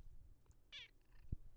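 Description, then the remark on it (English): A female cat lets out one short, high-pitched meow in the morning that stands out against a quiet background, followed a moment later by a dull low thump. No one speaks. “Your cat is yelling at me.”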